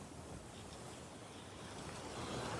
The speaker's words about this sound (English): There's our ship, the Sea Explorer. Let's raise the anchor and set sail. We're off. Look at the waves crashing against the ship and the seagulls flying overhead.